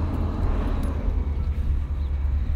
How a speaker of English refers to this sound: Hello, garbage truck. It's garbage day. Good luck on all your garbage retrieval.